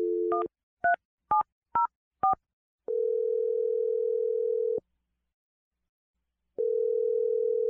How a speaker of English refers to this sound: We're going to dial her phone number right now.